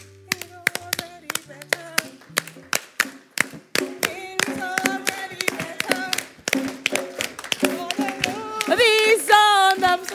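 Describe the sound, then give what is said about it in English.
A church audience claps hands along to a song in a steady, even rhythm, sharp and loud, while voices gradually join in singing and grow stronger toward the end. “I know you guys like this, but with these songs, we don't clap like this. With this song, it's.”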